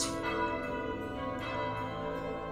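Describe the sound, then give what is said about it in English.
A church bell rings with two strikes about a second and a half apart, each leaving a long, shimmering hum that rings on between them. No one speaks. “And you start to hear noises coming from outside, and then suddenly you hear a bell start to ring.”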